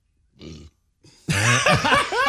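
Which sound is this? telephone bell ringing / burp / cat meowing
burp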